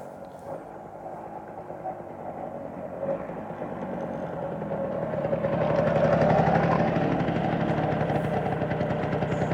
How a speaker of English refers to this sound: Here come the boys now on the scooters. They're not as quick as they used to be.